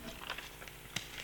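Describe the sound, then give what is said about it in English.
Soft rustling of paper as someone searches for a lost bit of paper with notes, a quick series of light crinkles and shuffles with one sharper rustle near the end, with no voices. “I've lost my bit of paper.”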